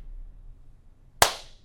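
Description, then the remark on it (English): A single sharp hand clap, made to sync up a video recording, rings out after a stretch of quiet low hum, its bright crack decaying quickly with a brief ringing tail. “One more clap of justice. Nope. This is the clap.”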